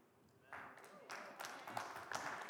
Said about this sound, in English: Thank you for that weak applause in Jesus' name.